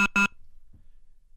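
Two quick electronic beeps from a caller's dropped phone line on a radio call-in show, close together and fairly loud, then the line goes quiet with only faint low hiss.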